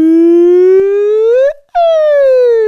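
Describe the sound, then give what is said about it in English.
An elephant playing slot machines trumpets loudly: a long, brassy blare rising in pitch, a brief break, then a second blast sliding back down, with no voices. “An elephant playing the slot machines in Diamonds”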